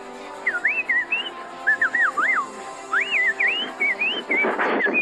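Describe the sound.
A person whistles bird calls: a string of short, warbling phrases that swoop up and down in pitch, repeated steadily for several seconds with brief gaps between them.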